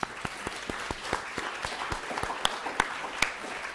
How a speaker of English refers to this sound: So let's have a round of applause for all our speakers.